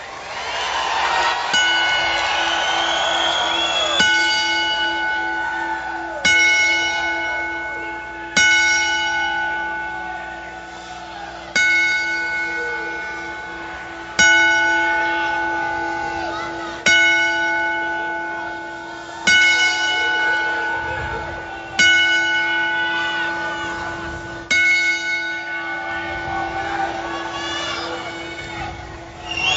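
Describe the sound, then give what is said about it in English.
A bell is struck ten times at slow, steady intervals as a 10-bell salute honoring someone who has died. Each clear metallic ring lingers and fades before the next. No one speaks over it. “And as usual, when tragedy like this strikes, we say to the passed one and the family, we wish you the best, and we'd like to honor your life with a 10-bell salute.”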